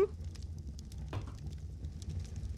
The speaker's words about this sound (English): Dice.